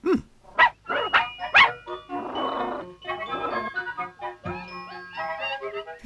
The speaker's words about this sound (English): Flopsy is completely vacant-faced at the growling dog heading towards her